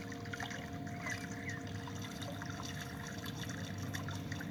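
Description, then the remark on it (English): Steady, gentle trickling water flows continuously at low volume, a soft babble with small splashy flickers and no voices. “Becoming one with the water.”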